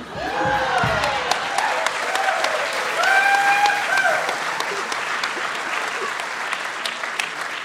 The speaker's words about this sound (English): the crowd goes wild.